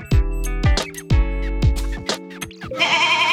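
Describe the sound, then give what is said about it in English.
A goat bleats loudly, a quick series of shaky, wavering cries running into a longer nasal bleat at the end, with no voices around it. “We haven't had a goat all day.”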